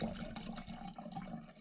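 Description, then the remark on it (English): J. Lohr wine pours steadily into a glass, a continuous gurgling, splashing stream, fairly soft, lasting under two seconds with no voices. “Oh, that's a nice heady pour.”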